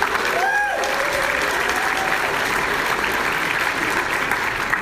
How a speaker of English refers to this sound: So can we get a round of applause for PAX?